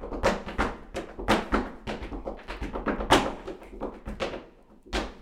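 Rapid tap dancing steps clatter in quick, uneven rhythmic bursts, sharp percussive clicks and heavier heel thuds close up, with brief pauses between flurries and no talking.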